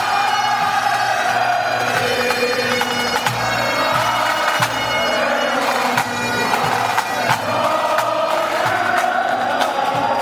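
Bagpipes of a pipe band drone and play a steady melody, partly swamped by a loud, continuous roar with scattered cheers and sharp claps from hundreds of Connacht fans as the team bus arrives, across the whole stretch.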